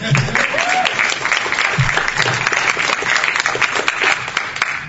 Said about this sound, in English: the guy who's applauding for the Invisible Chair next door.